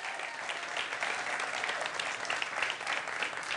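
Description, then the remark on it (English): A crowd applauds steadily, giving the Lord a hand clap, many hands clapping together in a dense, sustained wash of sharp claps with no pauses, holding an even loudness throughout. “Come on, y'all give the Lord a hand clap.”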